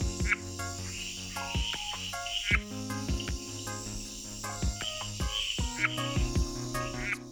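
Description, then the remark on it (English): Male red-eyed tree frogs, in mating season, call to potential mates from a high branch with short, sharp clicking chucks, repeated every second or so, over a steady, dense drone of insects and other calling frogs. There is no talking. “During mating season, male red-eyed tree frogs will ascend to a high branch to call to potential mates.”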